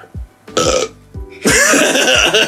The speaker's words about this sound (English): I was like, should I hide this burp? No.